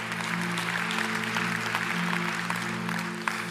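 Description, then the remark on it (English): A crowd applauds steadily for a few seconds, a dense wash of many hands clapping at an even level, with a faint low hum sustained beneath it. “That's a great place to clap.”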